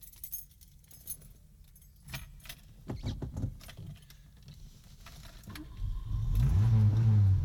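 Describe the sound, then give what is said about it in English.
Keys jingle and clatter for several seconds, then a Porsche sports car engine starts and revs up, growing loud with a deep, rising roar. “Sounds like a Porsche, right?”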